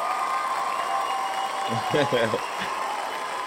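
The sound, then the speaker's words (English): Steady crowd applause from a played sound effect fills the whole stretch, a dense continuous patter of clapping at moderate volume, with a brief burst of voices rising over it about halfway through. “Yeah, that is the longest applause ever. Turn it off.”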